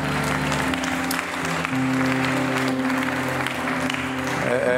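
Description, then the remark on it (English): A church audience claps hands in praise for the praise team, a dense, steady wash of applause lasting the whole few seconds, with sustained low keyboard or organ chords held underneath. “Let's give another hand clap of praise for our praise team.”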